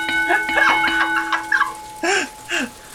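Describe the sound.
A voice imitates a loud counter bell, rung to be heard over the noise of a machine: a steady ringing tone with quick vocal sounds, then two strong, pitched bursts that rise and fall, each clipped off sharply.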